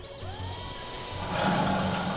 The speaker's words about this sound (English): Is that a tiger? Why is there a tiger in your forest/laboratory? In many cultures, panthera tigris tigris is a symbol of fear and ferocity.